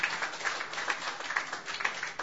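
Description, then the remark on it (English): A small crowd gives a round of applause for the staff, clapping steadily in a dense patter of many hands with no pauses, moderately loud throughout. “Yeah, let's get another round of applause”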